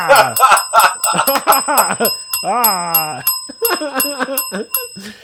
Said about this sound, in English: I haven't rang the bell tonight at all. 25 bells, please.